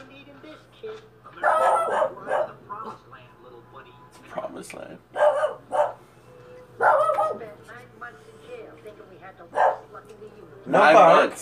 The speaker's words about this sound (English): Listen. Don't bark.